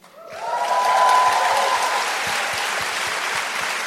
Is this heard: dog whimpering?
no